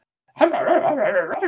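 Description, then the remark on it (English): A person vocally imitates their dog scratching at the shed where they were hiding, producing a fairly loud, wavering whine-like sound that runs continuously for just over a second after a brief silence. “I remember my dog come running to the shed, started scratching the shed.”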